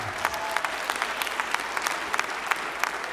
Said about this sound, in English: And we need to clap and thank God.